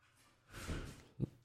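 Faint scuffling and breathy, panting-like noise from dogs jumping around, ending in a soft thump as one lands. No one speaks.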